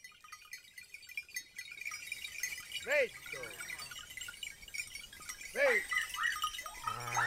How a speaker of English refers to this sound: We leave you this week in the company of sheep.